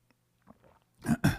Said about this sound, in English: Sip of coffee, and we'll dive in.